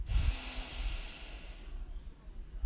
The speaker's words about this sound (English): Let's take a deep breath in